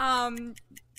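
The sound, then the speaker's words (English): A game timer ticks steadily, quick light clicks spaced evenly, following a brief sustained voiced sound at the start; fairly quiet. “Time's still ticking.”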